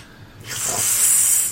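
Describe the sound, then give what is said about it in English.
A person imitates a cat hissing while it swats food out of someone's hand, a sharp, breathy, sustained sound lasting about a second, starting abruptly and fading slightly at the end, fairly loud with no other speech. “He hisses at you as he swats the food out of your hand and eats it.”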